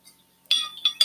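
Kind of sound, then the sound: household object, drinking water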